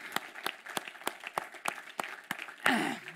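A person claps steadily, about nine evenly spaced claps at a brisk, regular pace, followed by a louder, longer burst of noise at the end.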